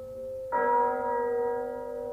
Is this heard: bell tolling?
yes